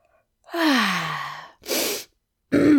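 yawn

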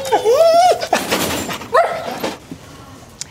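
dog barking and whimpering

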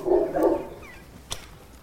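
dog barking

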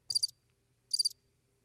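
crickets chirping sound effect

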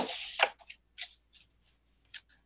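shuffling tarot cards

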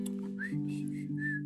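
whistled tune

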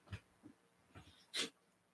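dog making noise

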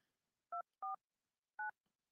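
telephone dialing tones

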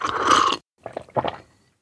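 sipping coffee

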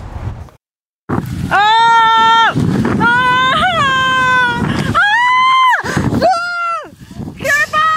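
woman screaming in terror

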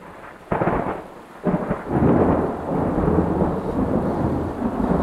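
thunder rumbling

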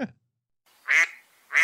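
duck quacking sound effect

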